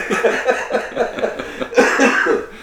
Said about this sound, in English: I'll apologize up front because you're going to get some coughing. Hacking his brains.